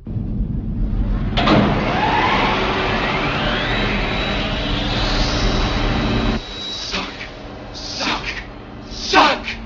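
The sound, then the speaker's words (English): A vacuum cleaner switches on with a loud, rushing suction roar and a motor whine that climbs to a steady high tone, then cuts off abruptly, followed by a few short hissing bursts. “Now, commence Operation Vacuum Suck.”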